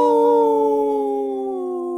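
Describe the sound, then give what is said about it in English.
A person imitates a wolf howl: one long, steady tone that slowly slides downward in pitch, loud and unbroken, with no other sounds around it. “This portion of the show is brought to you by Howling for Wolves, protecting wolves for future generations. Howl.”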